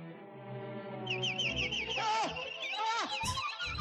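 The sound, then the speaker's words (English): Warbling, high-pitched bird chirps and trills rise over a sustained orchestral-sounding backdrop, several birds calling in quick overlapping bursts, fairly loud. “Birds, epic birds come to the rescue.”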